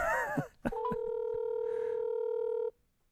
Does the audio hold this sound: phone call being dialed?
yes